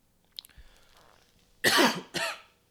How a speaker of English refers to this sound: Apologize for the coughing.